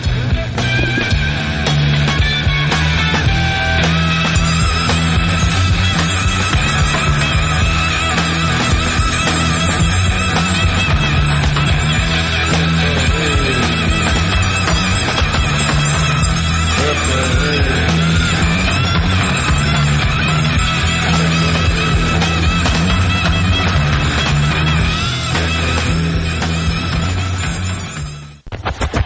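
A loud, dense rock song plays as the outro of the Rock and Roll Handyman Show on Super Talk Mississippi radio, with driving guitars, steady bass and busy cymbals, filling the whole stretch without any talking before cutting off abruptly at the end.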